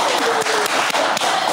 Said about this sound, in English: I love the applause. Yeah, man, that's a big deal.